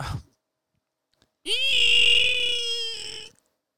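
A loud, high-pitched screech of car brakes slammed hard after a tire blew, rising sharply and holding for nearly two seconds before cutting off, following a brief low thud and a moment of silence.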